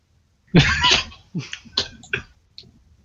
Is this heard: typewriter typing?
no